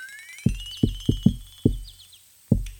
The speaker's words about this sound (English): You head down and you come to the front door. And it's a little cracked open. You hear yelling coming out from the back of the house. I knock, you know, my signature knock.